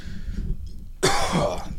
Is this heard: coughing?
yes